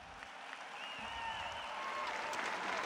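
Sustained applause from a large audience of peers, a dense wash of clapping that holds steady and swells slightly louder toward the end, with no voices standing out.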